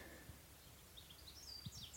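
Faint, high twittering calls of swallows and swifts flit in and out over a quiet outdoor background near farm buildings beside a clear chalk stream, a scattered run of short chirps in the second half.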